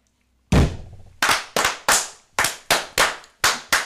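A group claps in unison after a toast, sharp loud crisp claps: one big clap, then about eight more in a steady, slightly uneven rhythm, with no talking.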